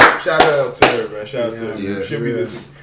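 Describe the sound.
Two sharp, loud hand claps ring out about half a second apart as applause for a guest, followed by a voice talking over the remaining seconds.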